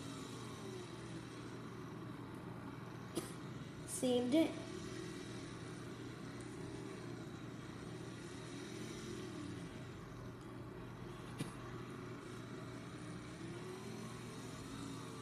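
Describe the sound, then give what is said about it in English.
A racing game car engine drones steadily throughout, its pitch rising and falling gently as it revs, while a man briefly speaks a couple of words over it. “Right, this car's actually doing well.”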